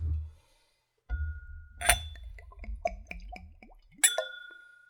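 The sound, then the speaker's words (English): A spirit is poured neat into a clean Glencairn whiskey nosing glass with a run of quick glugs that rise in pitch, framed by two bright clinks of glass, one partway through and a sharper one at the end. “Let's go for a pour.”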